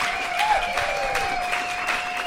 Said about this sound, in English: How about a big warm round of applause for our panel tonight?